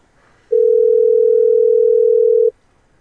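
A single steady electronic telephone ringing tone for an incoming call holds one low, even pitch for about two seconds, then cuts off, sounding clearly and alone against faint background hiss.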